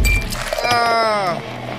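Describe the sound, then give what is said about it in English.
A bright clink of glasses touching in a toast, followed by a short ringing tone that wavers and fades within about a second. “Cheers. Get you a drink up.”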